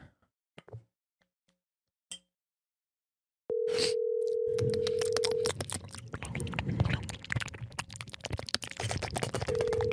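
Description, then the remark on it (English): A phone's outgoing ringback tone for a call that goes unanswered: a steady two-second electronic buzz, a long pause, then the next ring starting, over a noisy, clattering background with no one speaking. “Is it ringing?”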